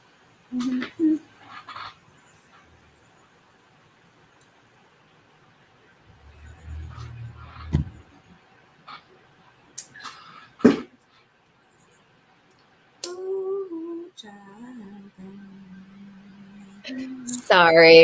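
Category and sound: animal, dog making noise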